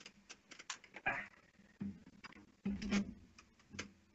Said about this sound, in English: I'm just going to turn a light on. I'm getting a bit dark in here.